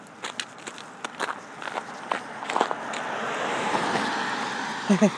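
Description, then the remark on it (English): Footsteps crunch along at a steady pace on an unshoveled, slippery path while walking to get the mail, then a car draws near with a swelling, broad road hiss that builds toward the end and briefly covers the steps. “There's a car.”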